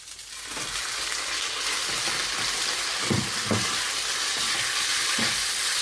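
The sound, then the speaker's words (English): Steady, loud sizzling of fried rice stir-frying in a hot pan as chicken is returned to it, with a few scraping and clattering stirs breaking through the hiss, no voices. “So I'm now going to return my chicken to the pan.”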